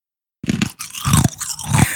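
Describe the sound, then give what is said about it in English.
Loud crunching as ice is chewed, with three or four sharp, gritty bites in an uneven rhythm after a moment of silence. No one speaks. “but you weren't chewing on chewing on ice.”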